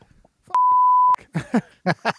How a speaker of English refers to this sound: That's a long beep.